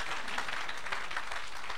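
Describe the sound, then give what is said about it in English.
A crowd claps together as an offering to the Lord in a dense, continuous burst of applause, many hands blending into a steady crackling wash that holds an even level throughout, with no voices heard. “Oh, give a clap of offering to the Lord.”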